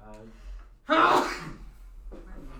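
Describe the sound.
A single close, loud sneeze: a short voiced intake of breath, then a sharp explosive burst that fades quickly, followed by a brief faint vocal sound.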